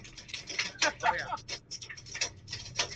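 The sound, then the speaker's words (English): Hail falling as a dense, irregular patter of sharp ticks and taps, steady and moderately loud throughout, with a voice faintly heard underneath. “Dang, that hail is I don't know if you can hear me over the tail.”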